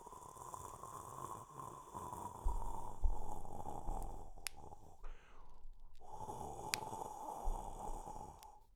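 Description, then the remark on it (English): A voice imitates a tree blowing in the wind as a sound effect: steady breathy whooshing and rustling hiss for the leaves, with a brief pause and a few sharp clicking pops, made by popping fingers, for branches snapping. “I'm going to throw out something and I need you to give a sound effect. Oh, that's rough. Can you do that? Okay. All right. Well, we'll give you an easy one to start off with.”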